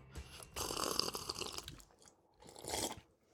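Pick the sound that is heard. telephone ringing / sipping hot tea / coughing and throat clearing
sipping hot tea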